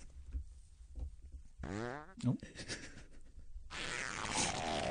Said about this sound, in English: Here's the thing. You can't fart and speak at the same time. That's a fact.